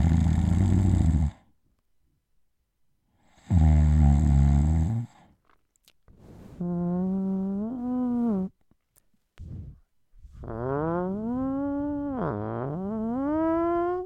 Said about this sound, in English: And she pressed play on one of the snore sessions. And instead of steady snores, there were steady, steady 12-second loud farts. So there'd be some snoring.